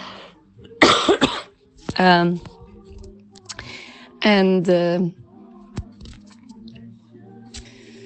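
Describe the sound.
A few harsh coughs come in bursts, one noisy and breathy, then two throatier, voiced ones, with scattered light clicks and a low steady hum in between.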